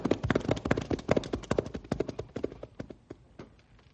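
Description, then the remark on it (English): Horses' hooves clip-clop in a quick, busy rhythm of sharp knocks, several rested horses moving together as their riders head back to town, the hoofbeats gradually thinning and growing fainter as they move off. “Well, let's step on it and get back to town now that the horses are rested.”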